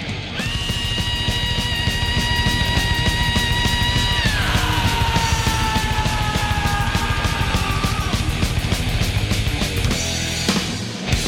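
A thrash metal singer lets out a long, piercing screaming yell, held for about ten seconds and dropping in pitch twice, over loud, dense distorted guitars and pounding drums.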